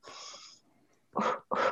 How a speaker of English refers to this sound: And I want you to do the breathing technique. So just breathe gently through your nose.